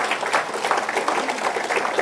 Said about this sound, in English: I mean, you're supposed to applaud them. Applaud them.